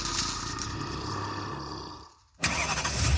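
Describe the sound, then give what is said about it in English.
A car engine cranks repeatedly without catching, stops for a brief moment, then cranks again. The grinding starter sound is loud, and no one speaks. “If you were in a horror movie, this would be the part where the used car you just bought doesn't start.”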